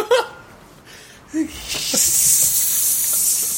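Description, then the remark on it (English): A couple of short vocal yelps come first, then a loud, steady snake hiss swells in and holds for about two seconds, sharp and airy. “Yuck. Snakes.”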